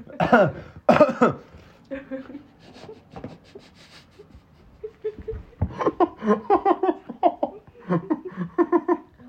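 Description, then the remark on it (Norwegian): Two loud, harsh coughs burst out at the start. Quieter throaty sounds follow, then a long run of short, rhythmic vocal bursts. “Jeg hostet deg og spytt ut av munnen.”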